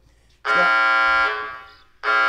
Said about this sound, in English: Lunch bell.